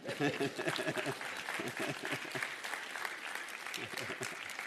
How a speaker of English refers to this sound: Anybody going to clap for me this morning?